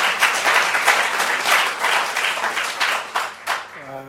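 A church audience breaks into steady, dense applause for themselves for coming to church, many hands clapping together for several seconds before it begins to thin out near the end.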